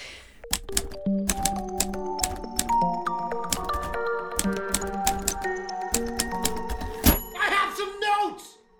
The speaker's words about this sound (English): And then the theme is like the sound of like writing. Yeah, like I was thinking a typewriter.